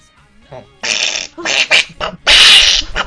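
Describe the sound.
A person voices an angry weasel noise: a string of loud, raspy, sputtering squawks in uneven bursts, growing harsher toward the end, with no words.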